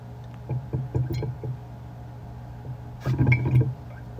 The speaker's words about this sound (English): I did put a blow-off tube on. The chunks of yeast are looking like a blizzard, a dark blizzard inside that dark wort. And I have the blow-off tube going into a growler of sanitizer. Let's see if we can hear it bubbling a little bit here.